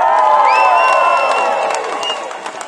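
A loud crowd cheers and whoops continuously, with scattered clapping and high shouts layered over a dense roar that eases slightly toward the end.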